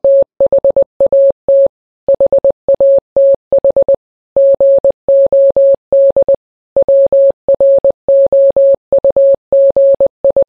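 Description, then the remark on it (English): A steady, mid-pitched beeping tone keyed in short and long pulses, Morse code, with a few longer pauses, each equal to seven dots, marking gaps between words. Clear, with no voices. “The words themselves are separated with a space of seven dots, like this.”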